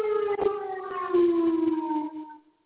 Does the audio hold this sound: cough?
no